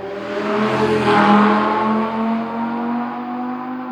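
A petrol car engine roars loudly, revving briefly to a peak before settling into a steady, throaty drone for several seconds, with no voices.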